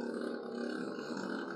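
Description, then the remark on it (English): A motorcycle engine roars steadily outside as a rider passes, revving hard, a loud, throaty rumble that holds without a break for the whole stretch, with no one talking over it. “Some fucking guy riding a motorcycle outside, bro.”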